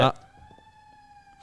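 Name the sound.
police car siren passing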